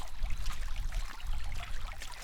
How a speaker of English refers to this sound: Making my way back, I can hear some flowing water, which really shouldn't be too surprising.